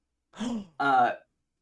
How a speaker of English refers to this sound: I heard you gasp.